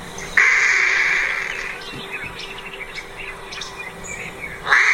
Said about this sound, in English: And Singapore has become a place where, as the story says, the straw-headed bulbul can warble in peace.